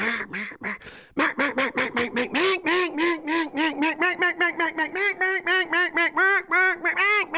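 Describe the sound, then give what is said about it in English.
Loud duck quacking or a duck call: a long, rapid run of nasal quacks in a steady, driving rhythm, with a brief pause near the start and no talking. “We like that downtime, that quiet time, talking to God, talking to Mother Nature, talking to the fish, talking to the ducks.”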